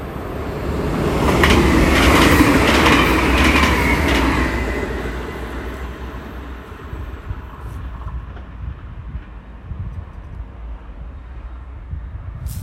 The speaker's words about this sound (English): Another train passes by.